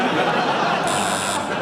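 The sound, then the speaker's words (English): A quiz buzzer sounds for about half a second, a steady, bright electronic tone over a continuous wash of crowd chatter and noise. “But I've buzzed in.”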